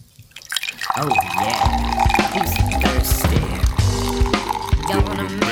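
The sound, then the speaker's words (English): Liquid being poured into a glass for cocktails, a steady filling and splashing sound with a few drips, running for several seconds while people talk over it. “Gonna make some cocktails on the podcast.”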